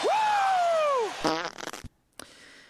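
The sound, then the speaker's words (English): A loud, drawn-out fart sound effect with a rising-then-falling squeaky pitch lasting about a second, followed by a short sputtering flutter and a brief pop after a pause. “Usually when I say poop, this happens.”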